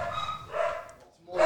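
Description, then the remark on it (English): Guard dogs bark in a couple of short, loud bursts while someone's alarm is going off, the second bark rising sharply at the end, with a fainter murmur between them. “Oh, guard dogs are out.”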